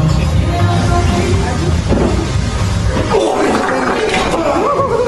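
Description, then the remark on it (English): A man farts on a leg press machine: a long, loud fart rumbles low and raspy for several seconds, rising into wavering, squeaky tones toward the end, with a rough, noisy background throughout. “The guy farting on the leg press machine.”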